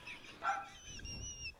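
A dog gives one short, sharp bark, followed by thin, high whining tones; the sound is faint, with low background rumble and no one talking.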